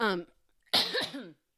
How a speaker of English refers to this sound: Sorry, I just had a cough.